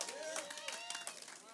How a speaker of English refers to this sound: You guys are clapping for Easter, right? It's right around the corner.